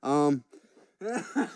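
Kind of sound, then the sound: human body sound, coughing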